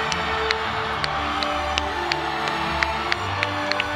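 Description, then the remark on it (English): A subdued crowd with weak, scattered applause as Daisy Ridley takes the stage at Star Wars Commiseration: a dozen or so isolated claps ring out over a steady low murmur of voices and faint cheering, never building into a full ovation. “I mean, check out the absolutely wild crowd reaction when Daisy Ridley took the stage at Star Wars Commiseration last year.”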